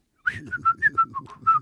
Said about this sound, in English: What? But you know I can't. Whistle for me now.